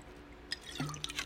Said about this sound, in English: All right. I'm going to take a sip really fast.